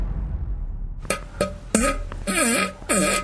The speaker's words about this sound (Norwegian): Og hva skal du fise for oss i dag? Yes, nei, da er scenen din. Og da kan du bare, som jeg sier her, let her rip.